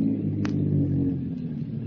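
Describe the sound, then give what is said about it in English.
A car engine rumbles steadily as the car comes around a curve on a little-traveled highway in the afternoon, a low throaty drone that eases off slightly as it slows, with a brief hiss of tires or brakes partway through. “A car comes around a curve. Slows up.”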